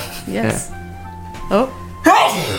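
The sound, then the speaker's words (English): A sudden, loud sneeze bursts out close to the microphone near the end, right after a short stretch of voices talking. “Bless you.”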